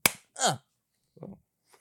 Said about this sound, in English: So when I clap my hands, it will be back to the way it was.